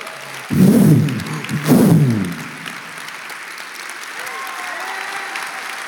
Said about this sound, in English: Now, those of us who made the decision to glorify God, we leave this earth because we glorified him, and we have, get ready to clap, new glorified bodies.